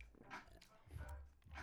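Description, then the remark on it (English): Quiet mouth sounds of someone sipping a drink and swallowing during a toast break, with a few soft wet gulps and slurps spread across a short moment and no talking. “And for this segment, we're going to have a toast break.”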